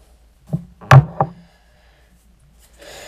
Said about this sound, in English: I'm going to set the glass down.